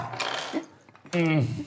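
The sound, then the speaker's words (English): A short, bright clatter of dice tumbling across a hard tabletop, lasting under half a second, followed after a brief pause by a vocal exclamation. “We need more dice!”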